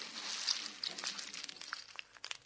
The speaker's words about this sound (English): Could you please tell me what's happening when you hear the snap, crackle and pop with Rice Krispies?